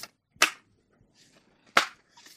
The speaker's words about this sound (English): Okay. I'm still shuffling my cards.